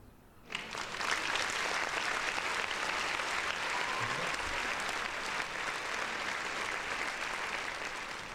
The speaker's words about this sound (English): I could hit the round of applause.